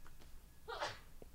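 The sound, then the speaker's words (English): A single short sneeze, a quick sharp burst with a voiced, breathy edge that fades fast. It is fairly quiet and stands alone, with no talking around it. “Bless you.”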